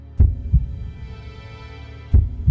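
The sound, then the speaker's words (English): A steady heartbeat thumps twice, each beat a deep lub-dub pair of low, muffled pulses, with a faint low hum filling the pause between them. “Her pulse was a cool and steady 75 beats per minute.”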